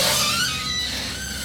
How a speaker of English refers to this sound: Buddy put his key into the lock and the door's lock screeched.